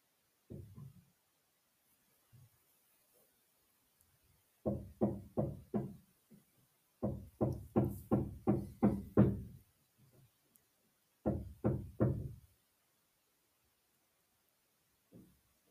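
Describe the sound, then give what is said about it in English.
Hammering in quick bursts: a run of four blows, a longer run of about eight, then three more, each strike sharp and thudding with brief pauses between sets. No one speaks. “There's the hammer.”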